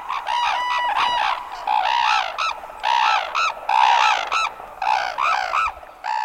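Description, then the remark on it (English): Two red-crowned cranes on a snow-covered field in northern Japan face one another, heads raised skyward, and call in unison, loud, ringing bugle-like cries repeating in quick overlapping bursts, with short pauses between phrases and no talking. “On a snow-covered field in northern Japan, two majestic red-crowned cranes face one another, raise their heads toward the sky, and call in unison.”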